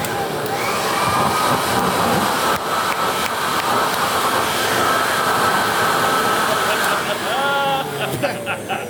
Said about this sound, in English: I didn't clean that thing either, by the way. That is not a clean leaf blower.